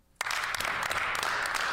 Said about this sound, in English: Big claps, dude. Big claps.